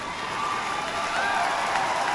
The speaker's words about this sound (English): And voting rights. A lot of applause for that. A lot of applause.